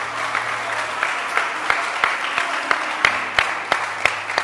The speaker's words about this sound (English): Clap your hands and let's close the service.